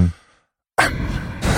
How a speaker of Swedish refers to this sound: Och som är också efter att man sagt att andas ut med näsan så här. Varför låter det så här konstigt? Varför visslar och piper i podden? Ja, det är för att vår andning har blivit sämre. Så är det ofta när man är lite packad så blir det så här.